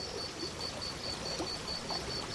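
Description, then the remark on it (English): Steady rush of flowing river water by a tree-shaded riverbank in what is now Wyoming, United States, continuous and even throughout, with a faint, regular high-pitched pulsing chirp sitting above the watery wash. “We're sitting in the shade of some trees near the bank of a river in what will one day become Wyoming in the United States.”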